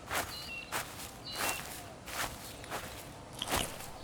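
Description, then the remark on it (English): Footsteps walking back past a veggie patch at an unhurried, steady pace, six or seven crunchy steps about every half second, over a low rumbling background with a few faint high chirps. “I've just walked back past the veggie patch and someone is acting like it's a supermarket, helping themselves to carrots and lettuce.”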